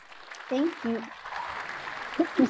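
An applause sound effect welcoming a guest on the EdUp Experience: a dense wash of crowd clapping that carries on throughout, with a few short tonal whoops or cheers rising above it near the start and end.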